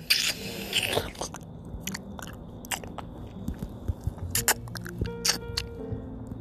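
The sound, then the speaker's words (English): Wet, close-miked eating sounds: a brief slurping suck at the start as the water is sucked out of the shell, then irregular soft crunches, squelches and smacking clicks as hot boiled peanuts are chewed and sucked, with no talking. “Suck the water out of the shell.”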